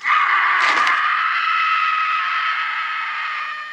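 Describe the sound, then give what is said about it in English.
A single long, high-pitched scream from a movie clip, held steadily for about four seconds, loud, with a brief burst of noise near the start and no talking over it. “Which one had the longer scream?”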